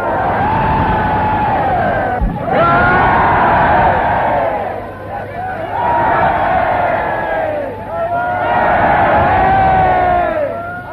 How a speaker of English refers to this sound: There was no sign of British reserve as the crowds fought to get near the Premier's car.